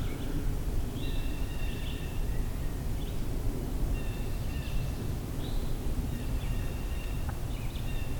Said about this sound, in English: So I'm back at the Tionesta scenic area. And at the parking area, there's a hooded warbler. Weedy, weedy, weedio.